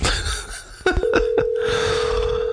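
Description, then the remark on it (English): An outgoing phone call: a few quick dialing beeps, then a steady electronic ringing tone that holds for over a second, set against a faint background hiss with no one talking. “let's give Adam Goldberg a call”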